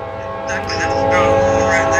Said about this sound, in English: Hey, on, there's a train. There's a very loud train going by right now, so.